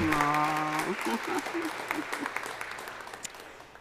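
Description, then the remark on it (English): An audience at a church service breaks into steady applause to welcome a visiting preacher, a dense patter of many hands clapping that gradually thins out, with a sustained musical tone ringing underneath at the start. “We can clap to say welcome and thank you.”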